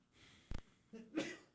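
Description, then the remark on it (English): A quiet sneeze, with a short sharp burst followed by a voiced intake and a second breathy explosive burst, heard alone. “Stop sneezing.”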